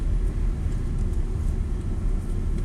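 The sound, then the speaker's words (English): Steady low rumble of road noise from inside a moving car, a continuous droning hum with a faint hiss above it, no voices present. “Me being bored in the car.”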